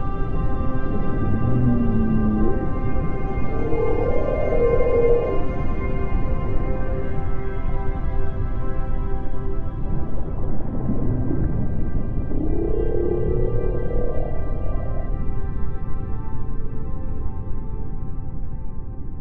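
Underwater whale calls at Ubatuba, a series of low moaning, rising and falling tones, sound over a steady hum of engine-like drone and background noise, with no voices.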